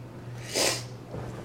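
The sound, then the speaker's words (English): A single short, breathy sniff through the nose, moderately loud, over a steady low electrical hum with no talking. “And I keep sniffling, and I don't know why.”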